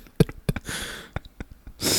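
A short, gravelly burp, with a couple of low guttural pulses followed by breathy, noisy exhalation and scattered clicks, and a louder rush of air at the end.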